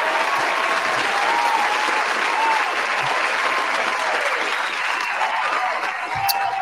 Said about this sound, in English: That's sound advice, man. Round of applause for that advice right there.